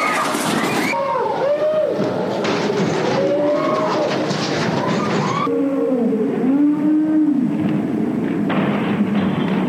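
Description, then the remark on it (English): A motorbike engine revs up and down repeatedly inside a church, its pitch rising and falling in loud sweeps, with a dense, echoing background. “In my mind, you need to stick to preaching to young people, not riding motorbikes in church.”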